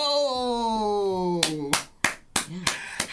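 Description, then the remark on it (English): A long, slowly falling voiced tone gives way to about six sharp, loud hand claps in an uneven rhythm, with brief vocal sounds between them, like a small burst of applause imitating a crowd, after someone gives a definition of the word "vascular". “You hear the crowd?”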